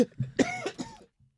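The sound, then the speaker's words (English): A voice imitates the gruff, grumbling cough of a grumpy old man (a boomer): a short burst of rough, throaty hacks lasting about a second, fairly loud, ending with a faint low grunt. “That wasn't me coughing. That was my impression of them. That was the boomer coughing in you.”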